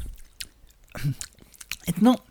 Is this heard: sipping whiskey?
yes